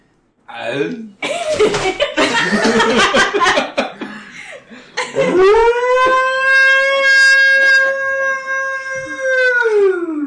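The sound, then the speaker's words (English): A person imitates a wolf howl for a role-playing game character who has shifted into Garu form: after some laughing and scuffling, a voice rises into one long, steady, tonal howl held for several seconds before tapering off. “I believe he also howled.”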